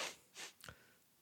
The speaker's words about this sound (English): That is no reason to sniffle.